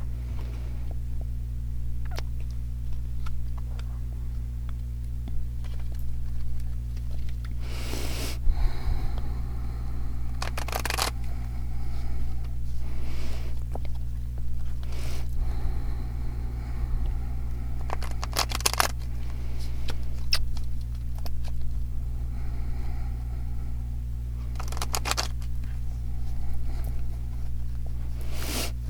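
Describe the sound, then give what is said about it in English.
Osho Zen Tarot cards are shuffled in repeated brisk bursts of papery riffling and snapping, spaced irregularly over a steady low electrical hum, with no one speaking. “So I will be silent for a moment while I pray and shuffle.”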